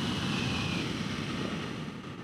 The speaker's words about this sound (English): Well, now that plane took off.